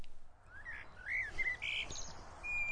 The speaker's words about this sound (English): The refreshing sound of birds tweeting, and we can see swallows coming around the water here. It means we're in W11, Washingborough.